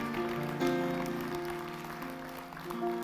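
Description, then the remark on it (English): An audience claps steadily in a dense, continuous patter, mixed with sustained keyboard or organ chords that shift pitch a few times; no one speaks. “If we're going to clap, let's clap.”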